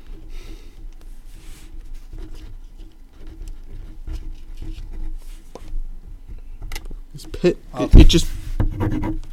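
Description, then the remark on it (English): Soft, scratchy, uneven strokes of a pen moving across paper, ending in a louder burst of scraping and tapping near the end, with muffled voices in the background; the pen has stopped writing though it still has ink in it. “They're not dead. You can clearly see the ink in it. It stopped writing.”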